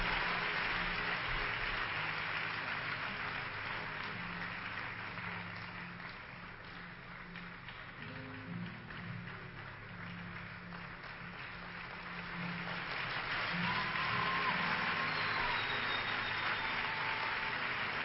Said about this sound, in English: Please, church, one more time, give them a clap offering. Let's celebrate them.